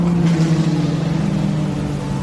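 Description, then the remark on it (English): A steady, loud engine drone with strong low harmonics holds throughout as race cars roar past on a track, with no voices. “Race cars behind you.”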